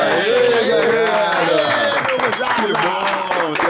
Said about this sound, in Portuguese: Vamos receber com muitas palmas, muito carinho, essa dupla maravilhosa, Malvino Salvador e Kira Grace.